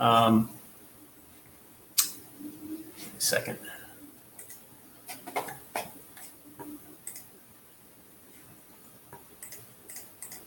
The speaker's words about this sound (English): Sorry, I'm getting these crazy notifications that I need to shut off so I don't have making all this noise.